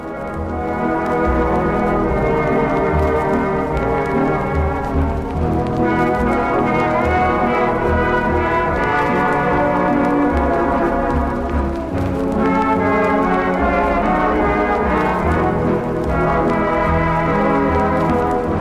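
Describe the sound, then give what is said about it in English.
Looped ballroom music, heavily distorted, slowed down and filtered, smeared into a thick, loud, unrecognizable drone, with layered sustained tones slowly shifting pitch and occasional blurred accents, no voices present. “And then as the albums go on, it slowly gets more distorted, slowed down, filtered, until it just becomes an unrecognizable drone of noise in like this 6 hour crazy experience.”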